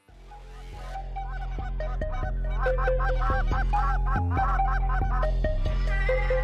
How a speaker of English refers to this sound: This honestly goes so hard every time. Why does this song get me so pumped up? I don't know. It's got the goose calling in it. It's solid.